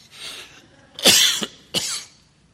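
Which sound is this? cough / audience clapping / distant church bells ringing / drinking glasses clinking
cough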